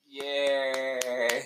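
About five weak, evenly spaced hand claps, thin and faint, sounding over a steady sustained musical tone that runs throughout.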